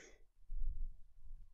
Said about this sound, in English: Excuse me as I yawn straight into the camera.